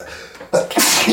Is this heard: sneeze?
yes